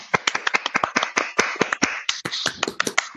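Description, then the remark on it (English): A short burst of hand clapping, a few people applauding with quick, uneven claps that keep up steadily for a few seconds, with no talking. “We don't have the button to make the round of applause, but I'm going to do it from this way.”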